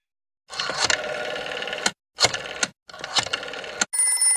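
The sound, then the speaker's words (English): An old rotary dial telephone's mechanical bell rings loudly in three rattling bursts separated by short pauses. A brief steady electronic tone follows at the end. “That phone is a rotary dial telephone.”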